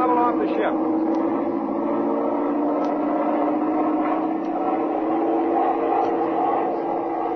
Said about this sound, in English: All right, open up the engine.